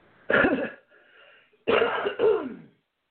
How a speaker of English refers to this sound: Clear my throat, and then we are going to move on to our next caller